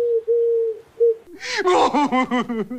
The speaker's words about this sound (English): See, because that was a dove.